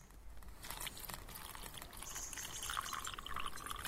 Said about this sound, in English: And then what will happen is a little bit clean water will pour down into here because of the hole in the plastic cup. Let's find out.